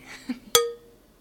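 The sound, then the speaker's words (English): Wine glasses clink together once in a toast, bright, the ringing tone fading over a fraction of a second, with a softer tap just before. “Cheers. Hey, cheers.”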